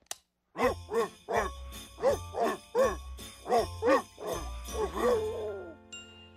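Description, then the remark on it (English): A recording of barking dogs singing Jingle Bells: about a dozen short, pitched barks bounce out the familiar tune in a steady rhythm over a soft, sustained musical backing, ending on a held note. “So you see, gentlemen, this 7-year-old boy somehow managed to swallow a recording of barking dogs singing Jingle Bells.”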